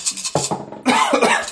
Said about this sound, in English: I coughed on my arm.